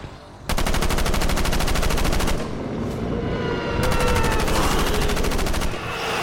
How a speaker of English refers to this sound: It was only when gunshots screamed from the corner of the room, Vorin unloading his automatic rifle into the body of the demonic boy, was Wesley able to move.